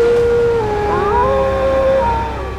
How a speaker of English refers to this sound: The gray wolf was Sigmund. Sinfiotli turned to meet the wolf's eyes. They were the same blue as his father's. The wolf that was Sigmund let out another bone-rattling howl.